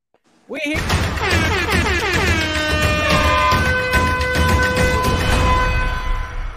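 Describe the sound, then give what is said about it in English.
The BCFG Guarantee Siren sound effect, debuting for a Pittsburgh money line pick, bursts in abruptly, its rich, buzzy tone sweeping upward in pitch for a couple of seconds before holding a loud, steady wail until the end, with no talking. “Guys, I'm going to tell you right now, we get to debut the BCFG Guarantee Siren.”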